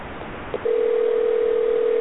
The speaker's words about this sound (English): Well, I hear a ringing phone. It does that sometimes.